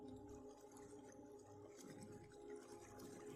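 Water trickles and flows steadily at a low volume, with scattered drips and small splashes over a continuous watery wash and a faint steady hum beneath, with no voices.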